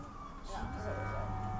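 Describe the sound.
An emergency vehicle siren wails with a steady, high tone over a low rumble, growing slightly louder as the vehicle approaches at speed, with faint voices mixed underneath.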